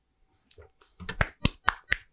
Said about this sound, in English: Thank you. Please, claps. Thank you. I appreciate that.